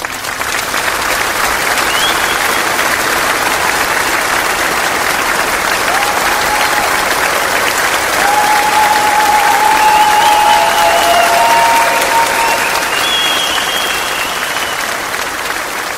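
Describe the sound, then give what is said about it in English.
An audience claps for the guests, steadily for about sixteen seconds, a dense, loud wash of applause that swells slightly midway, with a few faint whistles rising above it near the end. “Let's give a round of applause for our guests.”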